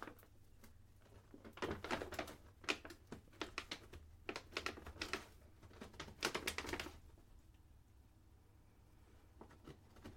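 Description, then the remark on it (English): A paper bag lying on the floor crinkles and crunches as a woman walks on it, in a run of sharp, irregular bursts for several seconds, then fades to a few faint rustles over a low steady hum. “She's walking on a paper bag that happens to be on the floor.”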